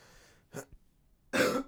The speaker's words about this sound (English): Sorry. I'll try to pause if it's going to be like a bad cough. I'll try to like pause so you don't hear it or like mute. You know what I mean?